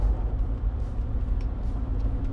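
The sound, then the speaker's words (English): A steady low rumble of road noise fills the space, the muffled drone of a vehicle interior while driving, with faint higher hiss drifting in and out and no one speaking. “Maybe these will be a regular, you know, in the car”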